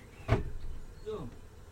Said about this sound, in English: Oh. And that window. That window opened as well, and that window.